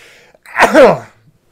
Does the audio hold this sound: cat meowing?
no